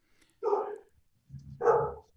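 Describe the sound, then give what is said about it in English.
A dog barks twice outside, heard through an open window on a nice day, two separated woofs with a low rumbling growl leading into the second, no one speaking nearby. “Is the dog back? No, that's just from noise from outside.”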